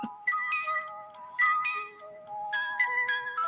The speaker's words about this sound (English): Y'all hear the bells.